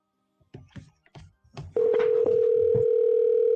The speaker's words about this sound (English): We'll call him. Calling him right now.